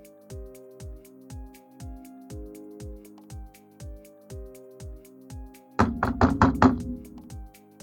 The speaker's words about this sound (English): Is someone pounding on our door?